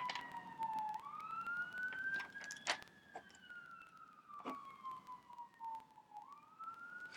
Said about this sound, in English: Always reminds me of the Rooster Teeth podcast. You'd be listening to that and you would hear like trucks and all going past and like sirens and shit.